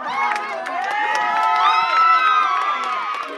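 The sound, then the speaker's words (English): A crowd of employees bursts into loud, sustained cheering as a lawyer on the phone announces the court's decision cancelling the sale, many voices shouting and whooping at once with high-pitched yells rising over the din for several seconds. “And they announced it, and the lawyer, they were on the phone with a lawyer, and it just erupted. Everyone erupted.”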